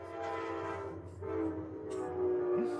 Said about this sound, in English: Oh, good time for the train to come by.